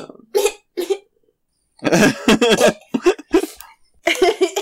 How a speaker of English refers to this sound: I just imagine you're like coughing up blood, and now I'm worried that you're gonna get knocked right back down again.